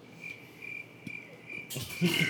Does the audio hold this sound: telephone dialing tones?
no